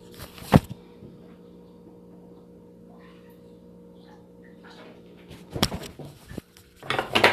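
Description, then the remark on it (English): Kitchenware clinks and clatters while coffee is being made and water is heated, with a sharp knock early on, then a quieter stretch over a steady low hum, and bursts of rattling and scraping toward the end. “I'm making some coffee right now. Hold on. Let me heat up some water.”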